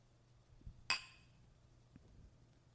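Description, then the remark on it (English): A single bright clink of wine glasses touching in a toast, ringing briefly before fading, with a faint low hum and soft bumps around it. “Every time I say bleep that out, I say we drink wine. So cheers.”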